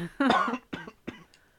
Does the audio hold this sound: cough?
yes